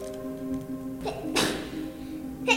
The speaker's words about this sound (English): Bless you, baby. Bless you.